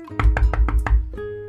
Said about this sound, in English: It was a small cabin where six children were living with their mother. Mars knocked at the door.